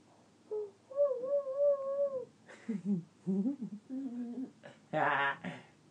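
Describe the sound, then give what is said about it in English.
A young child imitates a mourning dove's coo with a long, steady hooting 'ooo', then makes several shorter cooing and babbling sounds, ending in a louder, breathier burst. “What do the morning doves do?”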